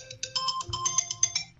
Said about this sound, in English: All right, that's our time. Every show. That was your alarm timer. Okay. That was our Kemba timer.